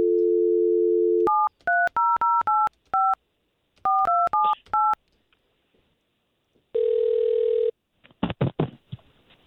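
Radio station K92.3 phones a listener's number: a steady dial tone gives way to a quick series of about ten touch-tone beeps in two bursts, then a pause, one buzzing ring, and a clattering pickup at the end.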